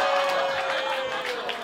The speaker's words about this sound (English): There is... The applause that just got was evil. Evil, you bitches.